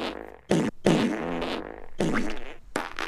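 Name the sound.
imitated fart noise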